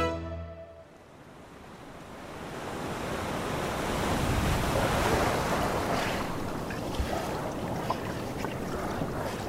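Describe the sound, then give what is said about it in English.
Steady wash of sea waves rolling along the shore of Niangai Island off the coast of Sierra Leone, a broad continuous surf roar that swells and recedes, with some wind buffeting the microphone and no voices. “A woman carries her toddler on her back and laundry on her head as she wades through the water along the shore of Niangai Island off the coast of Sierra Leone.”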